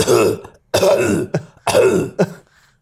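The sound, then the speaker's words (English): A person imitates a dog's harsh coughing bark: three loud, rasping, throaty bursts in a row, each ending with a short gulping catch. “He lays by the fire, he coughs, makes a horrible coughing bark noise.”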